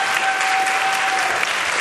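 An audience applauds steadily, a dense, even wash of many hands clapping at once, fairly loud and sustained with no voices over it, plus a faint thin tone humming underneath.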